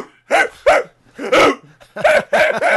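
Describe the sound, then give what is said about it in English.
A person imitates a man barking like a dog in a toilet, giving a string of loud woofs in quick bursts: two barks, a pause, one more, then a rapid run of three or four. “I bet he actually barks.”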